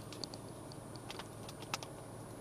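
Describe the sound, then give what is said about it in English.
A deck of tarot cards being shuffled, quiet papery clicks and flutters coming in short irregular bursts, with no one speaking. “I've been shuffling these cards the whole time, so I do like to shuffle while I'm on camera. So since I'm in audio form, I'll do the same still, just to make sure we're getting accurate readings.”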